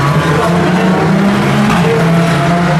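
Loud, continuous roar of several GT race car engines on track, the AM class cars, including a pink and white Corvette and Ferraris, going by, their overlapping low droning tones rising and falling in pitch, with no talking.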